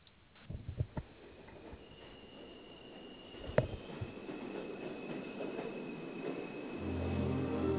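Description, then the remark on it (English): A train pulling away: a few scattered clanks and one sharp metallic bang, then a steady rumble that grows louder as a low, droning engine tone swells near the end. “God, is that my train? Oh, don't close.”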